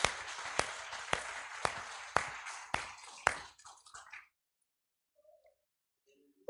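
A crowd claps hands together in praise of God in a steady, rhythmic beat, about one clap every half second over a wash of applause, then the clapping fades out and falls silent.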